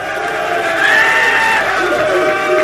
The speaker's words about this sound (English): They're cheering him. They love him.